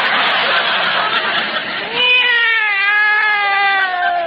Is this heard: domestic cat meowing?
yes